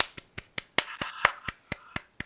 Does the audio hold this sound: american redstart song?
no